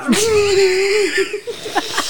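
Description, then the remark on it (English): A honking nose blow holds a steady, whiny pitch for about a second, then breaks into a few short, snuffly bursts before fading out. “Sorry, I don't mean to blow my nose into my face.”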